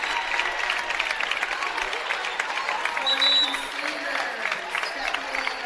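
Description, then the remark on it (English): Edgerton basketball fans give their team a steady, sustained round of applause, dense clapping filling the whole stretch with crowd voices mixed in and a brief swell of cheering midway. “Edgerton faithful giving their team a nice round of applause, and well-deserved.”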